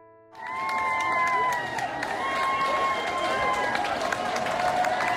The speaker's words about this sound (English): There's nothing like a cheering crowd to make that reward sing. On their return to Midway, the 93 vets of Operation Her Story were greeted with a high decibel ovation that lasted nearly 30 minutes.